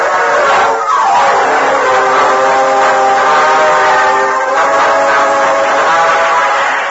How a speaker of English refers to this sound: Meanwhile, a short distance from Modoc City, Cliff Gunnison hurried through the empty passenger car and joined Gopher in the engine cab of the speeding train.